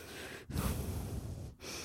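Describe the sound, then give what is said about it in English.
Loud heavy breathing: long, rough breaths drawn in and pushed out in a steady rhythm, broken by two brief pauses, with no talking. “Real life and the alternate universe made up in my head, where I started breathing really heavy.”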